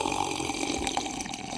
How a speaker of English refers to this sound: you're slurping over there, buddy?